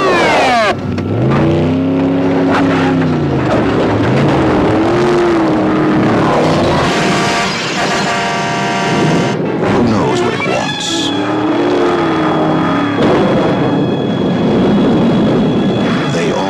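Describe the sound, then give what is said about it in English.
A loud engine of a car with no driver roars and revs continuously, its pitch rising and falling as it accelerates, with a high whining tone cutting through near the end. “Nothing can stop the car.”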